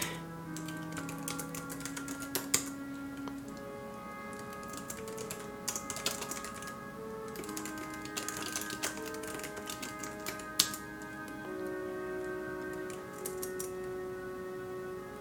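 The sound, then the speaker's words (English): Steady, irregular clicking of fingers typing on a computer keyboard, fairly clear, with short bursts and pauses, over a soft sustained musical drone in the background. “It's very much a setting focused series of stories, and we probably should have a tornado at some point, and I've just never thought of that until I was typing just now, so there we go.”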